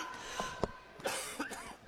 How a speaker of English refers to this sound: 3 days of rest, and now I'm coughing again.